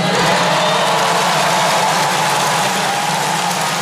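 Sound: crowd applause and cheering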